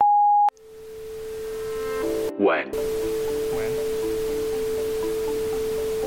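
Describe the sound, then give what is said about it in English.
A toy phone held to a real phone playing a spam call gives a steady electronic hiss of static with a constant humming tone, broken by a brief rising chirp and a faint, garbled voice fragment from the spam call buried in the noise. “Interestingly, when you play both together, the static and noise almost seem to filter out words from the spam call, and you hear the following.”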